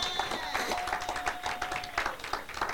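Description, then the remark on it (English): A church audience claps steadily for the Lord Jesus, many hands overlapping into a dense, sustained patter at moderate loudness, with a faint steady tone running beneath the applause for about two seconds. “Clap for the Lord Jesus.”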